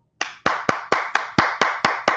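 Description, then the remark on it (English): A single person claps their hands on a live stream in a steady rhythm, about nine sharp, crisp claps spaced evenly apart, fairly loud with no talking. “Yeah, that's me clapping. I'm clapping on the live.”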